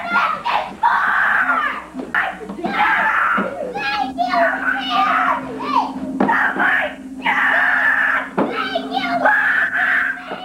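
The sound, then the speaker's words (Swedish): A young boy opening his Christmas present and finding a Nintendo 64 shrieks and screams with joy, loud, in repeated high-pitched sustained bursts that carry on almost without pause, over a faint low hum. “Det är en kille som öppnar sin julklapp och ser ett Nintendo 64. Man har inte sett någon gladare människa. Nej, han börjar liksom skrika av han glädje.”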